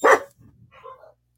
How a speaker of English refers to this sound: Your dogs sound like they're having fun. I know, they're vicious.